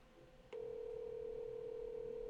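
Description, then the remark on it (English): A phone's ringing tone on an outgoing call to a dad: after a brief quiet moment, a steady, low electronic hum switches on and holds at an even pitch and loudness, with no voices. “Just let it bell. He's not gonna pick up.”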